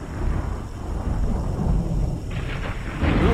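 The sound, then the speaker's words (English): Deep, continuous thunder rumbles through a storm, loud, with a broad roar that swells and rolls without pause; faint rain hiss sits underneath toward the end. “There's rain on the way. Pretty good storm, I'd say.”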